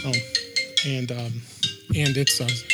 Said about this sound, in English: Sorry, my phone's ringing. I forgot to turn it off. That's what an iPhone sounds like when it rings, yes, guys.